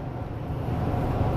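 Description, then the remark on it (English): A steady, low rumble of an old F-250 pickup truck's engine and road noise as it tows a boat to the launch at Lake Maurepas, droning evenly throughout with a faint windy hiss on top and no voices. “of the old F-250 pickup truck. As I tow the boat down to the launch at Lake Maurepas for a little afternoon boat ride.”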